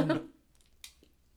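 People chewing buttercream-frosted cake during a taste test: a brief, louder burst of mouth noise at the start, then quiet, soft mastication with one sharp smack or click partway through.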